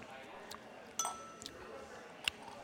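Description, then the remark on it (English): Glasses of bourbon clink together in a toast for National Bourbon Heritage Month: one bright, ringing chime, then a sharper tap a moment later, against a quiet background with a few soft rustles. “Let's say cheers”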